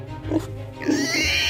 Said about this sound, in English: The fuzzy pig snorted sadly before turning back.